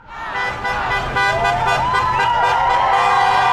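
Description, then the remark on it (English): Horns of several passing cars blare at once in a loud, sustained chorus of overlapping pitches, one tone wavering slightly, with traffic noise rumbling underneath, as drivers honk in support of about 75 to 100 people marching next to Metropolitan Avenue. “People are driving by and honking in support as about 75 people, maybe 100, are marked.”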